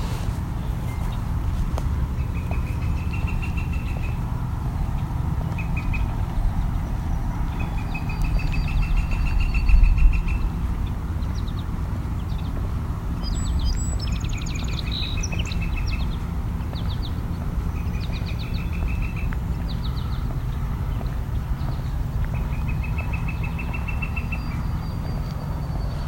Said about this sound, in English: A field sparrow. There are a handful of them here.